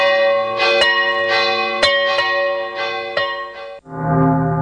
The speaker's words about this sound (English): The tolling of the bells, iron bells. What a world of solemn thought their monotony compels. In the silence of the night, how we shiver with affright at the melancholy menace of their tone.